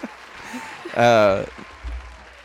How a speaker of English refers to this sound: I'm going to insert a crowd cheering here.